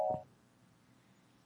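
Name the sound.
telephone call being dialed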